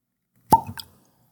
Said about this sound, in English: I'm going to open this brand new bottle on the microphone, see if it picks up anything. So here we go. Let's hear it.